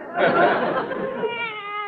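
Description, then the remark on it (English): A person says a single drawn-out meow as a way of saying goodbye, fairly loud, its pitch sliding and wavering as it trails off over about two seconds. “Instead of saying goodbye, they say meow.”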